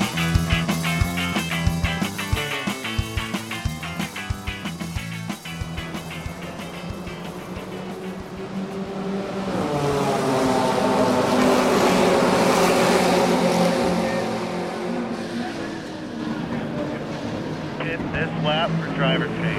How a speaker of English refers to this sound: Amazon Prime television show, driving that Porsche real fast in the turns